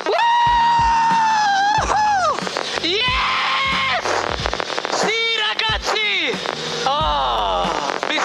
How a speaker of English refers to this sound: F1 drivers are the stars of the show. They win races, they spray the champagne, they take the glory, and they scream over the team radio as they cross the line.